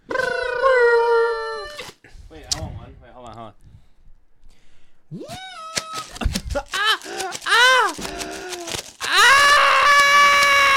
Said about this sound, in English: Basically, for audio listeners, we all just took a couple of party blowers and blew them on